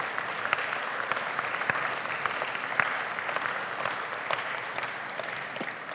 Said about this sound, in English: So church and all of us, let's give a huge round of applause for our teachers.